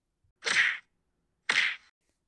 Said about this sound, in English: Two punches.